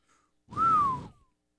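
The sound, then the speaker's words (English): A short whistled tune fragment: one clear whistled note that rises slightly and then glides downward, about half a second long, with breathy noise underneath and no talking. “Wasn't that whistle for that?”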